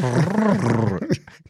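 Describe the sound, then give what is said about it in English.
A person talking cat to a cat makes a drawn-out, growly cat noise with their voice, the pitch swelling and sinking for about a second, then trailing off into a few short, fainter grunts. “You're like, I walked in the door just a minute ago and you were like talking cat to the cat.”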